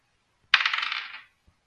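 Dice are rolled for initiative, tumbling across a hard surface in a quick clatter of rapid rattling bounces that fade within about a second, followed by one faint tick. No voices.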